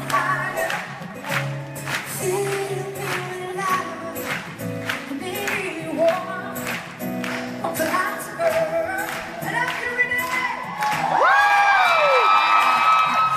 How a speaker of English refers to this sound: And after that, you heard somebody screaming. That was not me screaming like a girl.